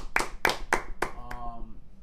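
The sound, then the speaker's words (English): A person claps their hands five times in a steady, evenly spaced rhythm. The claps are sharp and crisp, and the last is softer, followed by a faint lingering hum. “Big applause to you.”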